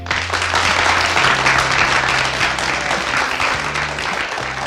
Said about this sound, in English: And to tell us all about it, can we have a big learnability round of applause